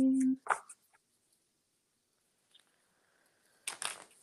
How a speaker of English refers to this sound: So let's see. I'm just shuffling.